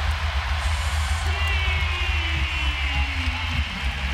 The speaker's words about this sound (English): Lamar Stevens with the bucket and a chance for an and one as the Rocket Mortgage Fieldhouse crowd roars its approval.